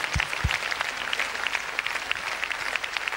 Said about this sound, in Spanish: ¿Cuánto dan la mejor ofrenda de aplausos al Señor? Hallelujah. Hallelujah. Hallelujah. Hallelujah.